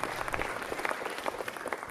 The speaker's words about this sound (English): Fantastic, wonderful. Should we give them a round of applause? Do they deserve it?